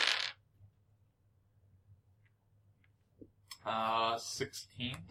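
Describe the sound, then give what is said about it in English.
Percentile dice, a D100 and a D10, rattle and click against a tabletop, a brief clatter followed by a few faint, scattered ticks, before people start talking. “Actually, sorry, roll percentile dice.”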